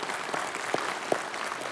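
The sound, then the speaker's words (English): A church crowd applauding the church's giving away of nearly $2 million in food to families in need, a dense wash of overlapping claps with a couple of sharper individual claps standing out, no voices on top. “And it's just because of that's something to applaud.”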